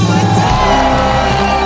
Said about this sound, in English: The crowd erupts into cheers once more.